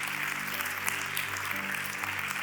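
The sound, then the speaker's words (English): An audience claps their hands for about 30 seconds in praise of God's mercy, a dense, continuous wash of many hands clapping at once with a sustained low hum beneath, loud and unbroken throughout. “Somebody just 30 seconds, just clap hands for his mercy.”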